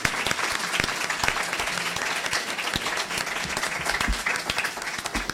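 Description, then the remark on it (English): An audience claps steadily for panelists at the end of a panel discussion, a dense, sustained wash of many hands with no voices rising above it, holding an even loudness for several seconds. “A round of applause for our panelists.”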